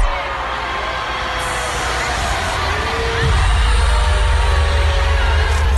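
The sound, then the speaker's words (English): A large, excited crowd at a a band concert in Kansas cheers and screams nonstop, a dense, loud roar of many voices that swells with a deeper rumble about halfway through. “The first one is a very happy crowd.”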